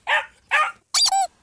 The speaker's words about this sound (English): Oh, squeaky toy. Yep. Those are the worst.